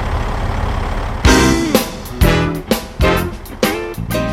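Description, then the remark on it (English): A short radio jingle made for a regular caller to the show: after a low engine-like rumble, a series of loud, rhythmic blaring stabs with bright, horn-like harmonics punches in, about seven hits over three seconds. “And so I think it's time that Kevin have his, yes, his own jingle.”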